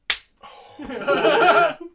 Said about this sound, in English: He just turns around and clocks him. Friendship over. Slap and survive.